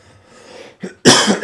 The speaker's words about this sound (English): I apologize for the coughing, everybody. Sorry about that.